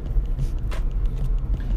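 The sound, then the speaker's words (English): Steady, low, droning road noise inside a moving car heading to a football game, a constant rumble with a brief rise of hiss partway through. No one speaks. “I'm here in the car now with my girlfriend,”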